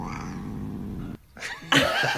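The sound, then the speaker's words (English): A cat lets out a drawn-out, wavering meow that sounds like a voice saying "wow," followed after a brief pause by a second, brighter, rising yowl, both loud. “there is a new talking cat that's going viral. And described as the most sarcastic wow you'll ever hear.”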